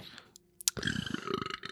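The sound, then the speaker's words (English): A loud, drawn-out burp that rattles and flutters with rapid pulsing vibration, lasting about a second, preceded by a couple of short clicks; a tongue-vibrating burp sound played by an Alexa smart speaker on voice request. “Alexa, give me a tongue vibrating burp.”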